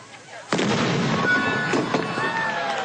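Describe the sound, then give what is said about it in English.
An anvil is blown up in New Westminster with one sudden, loud boom, which gives way to a sustained rumbling roar broken by a few more sharp cracks, with faint voices mixed into the noise. “The mayor of New West back then was also a blacksmith, and you don't mess with a mayor who swings a hammer and blows up an anvil.”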